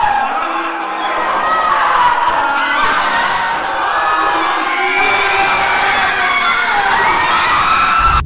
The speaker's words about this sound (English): Screams. An incredible number of heart-rending cries from an infinite number of people, men and women of all ages.